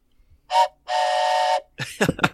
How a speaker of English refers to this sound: play that sweet, sweet train whistle and tell the audience how you're doing.